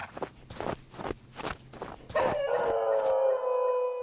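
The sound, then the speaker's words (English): A dog named Brutus lets out a long, sustained wolf-like howl from beyond a rock. The howl rises over a few seconds and is preceded by a run of steady, rhythmic footsteps crunching along. “A howl cried out from somewhere beyond the rock. Most who heard it would think it was the call of a wolf, but I recognized the canine voice.”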